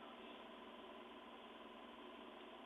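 A steady, droning engine rumbles without a break, heard through a narrow, tinny phone line that flattens it into a constant hum. No one speaks over it.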